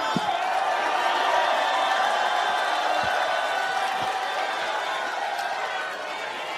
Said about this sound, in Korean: 네, 여러분 큰 함성과 박수로 이재명 대표에게 힘을 주십시오.